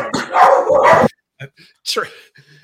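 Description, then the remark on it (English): Dogs howl and yelp in the background: a loud, sustained burst of howling for about a second, then a few short, sharp cries with gaps between them. “we even got the dogs howling back there”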